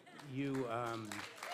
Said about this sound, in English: Crowd's roaring.